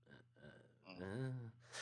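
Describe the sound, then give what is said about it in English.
A fairly loud voice lets out a strained, choking gasp, its pitch rising and wavering, then ends in a short breathy hiss. “Can't breathe. Some kind of gasp.”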